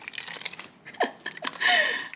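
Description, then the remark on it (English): A ladle scrapes and clinks against a pot of black-eyed pea soup in a series of quick, uneven knocks, followed by a short, steady hiss of the soup being ladled out. “I'm ladling it.”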